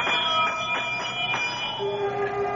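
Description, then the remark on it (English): A pulled bell at the great door of Carrig Cleaner clangs several times in quick succession, its bright metallic tone ringing on and slowly fading afterward, with no voices. “I reach out and pull the bell.”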